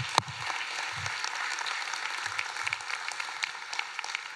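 A church audience claps steadily for 15 people being baptized, a dense, crackling wash of applause that holds for several seconds, with a sharp louder clap near the start and no voices over it.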